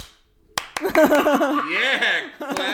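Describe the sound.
A handful of sharp, irregular hand claps ring out over excited, whooping voices, followed by a quick final burst of clapping at the end.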